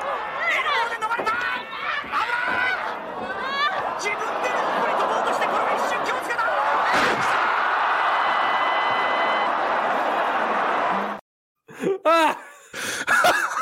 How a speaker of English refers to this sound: Oh God! It was a suplex into a into the exploding barbed wire.